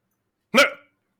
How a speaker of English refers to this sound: No, no, that was bark bark.